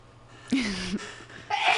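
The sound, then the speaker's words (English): A loud sneeze caused by allergies, with a voiced, drawn-out quality, followed half a second later by a second short, breathy burst, with no talking around it. “Allergies. I apologize. Bless you.”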